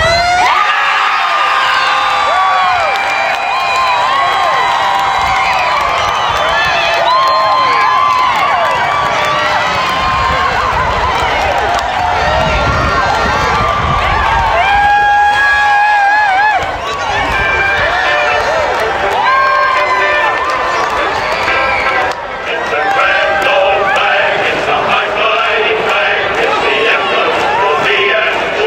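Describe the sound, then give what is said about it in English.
A large football crowd of Swan and Falcon supporters roars and cheers continuously at the final siren as West Perth make it through to the semis, loud, with shouts and whoops rising above the dense wall of voices for nearly half a minute. “Here's what the final siren sounded like.”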